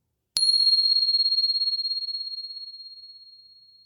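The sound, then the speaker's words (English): A single bell is struck once, giving a bright, high ring that lingers and slowly fades with a gentle wavering shimmer over several seconds, heard alone. “So once again, settling in, and here comes the bell.”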